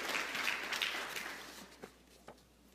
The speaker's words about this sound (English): Will you give the Lord another hand clap of praise?